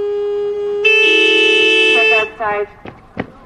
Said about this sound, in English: Well, you hear the horn sound, you know somebody has a check. So, and that's the way we work it.